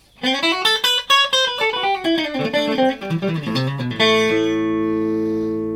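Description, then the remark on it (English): An electric guitar on its middle pickup plays a quick descending run of bright single notes, then lets a final chord ring out and sustain. Clean and fairly loud, with no talking. “Middle position.”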